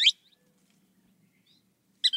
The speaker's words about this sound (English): In Central America, an enormous ringed kingfisher. While nearby, a thick-billed kingbird calls.